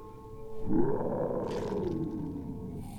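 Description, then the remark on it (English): A deep, drawn-out roar of a marsh monster in a movie swells in after a brief low hum, a guttural rumble with a rough, growly texture that holds steady for a few seconds before tapering off, with no voices present. “Like, I get that the girl screaming is trying to stop the marsh monster from eating her face, but where did the monster come from?”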